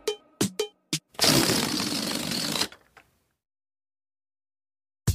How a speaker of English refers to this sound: Oh my, I let go of the balloon and it flew all around the room. Better blow it back up again.